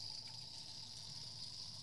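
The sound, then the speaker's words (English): A steady stream of wine gushes through a wine aerator, a continuous airy, hissing pour with a bright whistling tone, fairly quiet, with no voices. “That's the aerator that we're using to pour the wine.”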